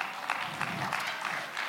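A short burst of steady applause from a church audience during a sermon, many hands clapping at once in a dense, crackling wash that holds an even level for under two seconds.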